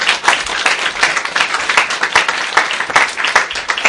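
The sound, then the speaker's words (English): Many people applaud after a talk introducing a course, a steady, dense patter of many hands clapping at once, loud and sustained without pause throughout. “Should we give a round of applause?”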